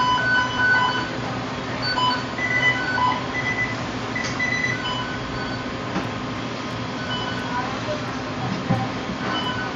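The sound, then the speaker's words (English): Short electronic beeps from machines at a job site chirp now and then over a loud, steady rumble of heavy machinery, with muffled voices in the background. “Sorry for all the beeps. The machines is tow up in this job.”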